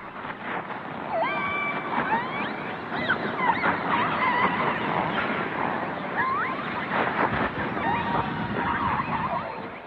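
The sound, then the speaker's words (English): Killer whale calls and squeaks: several high, bending whistles that rise and fall in pitch, repeating irregularly over a constant loud wash of underwater rumble and hiss. “The range of sounds is vast, from grunts and snorts to discreet squeaks that I'm told can be heard up to 5 miles away.”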